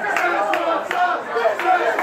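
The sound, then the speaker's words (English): A rowdy crowd of customers at a McDonald's counter in October 2017 clamoring for Szechuan dipping sauce for their McNuggets, many overlapping voices forming a dense, loud wall of chatter with sharp shouted bursts rising out of the din. “Customers crowd the counter demanding the Szechuan dipping sauce for their McNuggets.”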